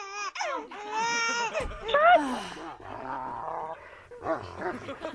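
A dog named Nico barks and growls at home while a baby wails, the two sounds overlapping loudly and continuously, with sharp yelps breaking through the sustained crying.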